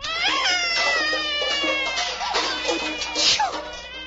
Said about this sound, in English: Oh, not more pepper. The baby's sneezing and howling already, poor little thing.